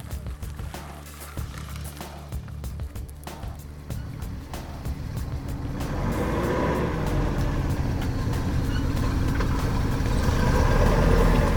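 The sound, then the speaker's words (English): A truck engine idles with a steady low rumble, then swells louder and rougher about halfway through, holding that heavier drone to the end. No voices. “She tossed down a board and I was able to get up into the truck bed.”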